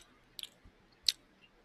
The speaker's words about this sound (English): On tonight's Nightcap, you're going to get some slight gum chewing sounds.